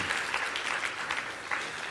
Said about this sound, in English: Let's get them a round of applause if we can.